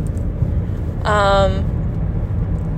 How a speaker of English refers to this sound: Oh, fancy car gang.